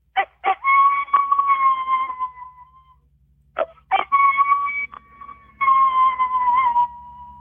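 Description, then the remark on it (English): Coyote howls played through an electronic game call: two loud, wavering howls, each opening with a couple of sharp yips, separated by a brief pause, with a faint low hum underneath. “You can do a coyote howl.”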